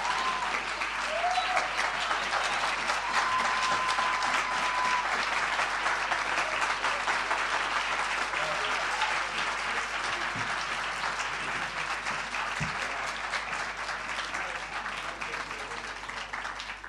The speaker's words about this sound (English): Wow. Let's give a round of applause for that incredible, incredible presentation.